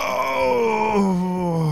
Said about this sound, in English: Oh, wow, …, that was a big yawn.